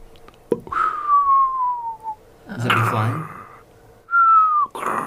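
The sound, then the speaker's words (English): A sharp pop followed by a long, falling whistle, then a brief burst of speech and a second, shorter descending whistle, apparently imitated by a voice up close rather than a real firework. “And it's probably about 2-3 o'clock in the afternoon, and you hear a pop and a whistle.”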